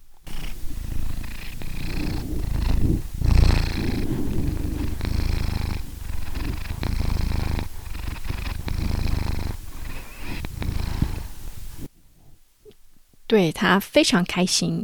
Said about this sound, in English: Actually, he is right next to me, so I can give him the microphone, and you might hear his purring.